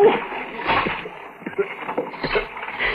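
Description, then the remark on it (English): Water splashes and sloshes heavily for a few seconds as a big man is hauled up out of a river into a boat, with bursts of churning and dripping, alongside strained breathing. “Try to reach the side of the boat. grab the sides and hold on.”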